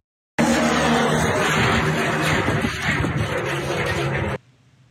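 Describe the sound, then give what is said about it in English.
A windmill's loud metal-on-metal grinding roars steadily for about four seconds, a harsh rushing noise layered with droning low hums and a thin high whine, then cuts off abruptly. “it was like a grinding metal on metal”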